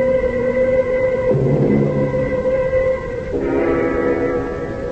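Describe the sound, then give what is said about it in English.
A passenger train on the Ossining line rumbles steadily along the rails, its continuous drone carrying sustained tonal hums that shift pitch twice. It is loud, with no voices. “1:00 on the Ossining train, the last coach.”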